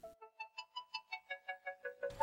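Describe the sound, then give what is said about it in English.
A timer for baking homemade bagels goes off with a quick run of about eleven bright, evenly spaced electronic ding tones, each slightly shifting in pitch, ending in a brief burst of noise. “Ding! Goes the timer.”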